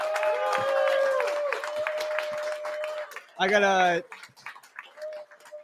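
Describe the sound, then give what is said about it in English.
A small crowd at a live show claps steadily for a few seconds to welcome a guest to the stage while voices talk and a thin steady tone hums underneath, followed by a loud shout or cheer and some lighter scattered clapping. “Come on, clap it up.”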